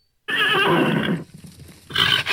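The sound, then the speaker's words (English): A horse lets out a loud whinny lasting about a second, then a shorter, softer neigh follows after a brief pause, with no talking. “That's horse talk.”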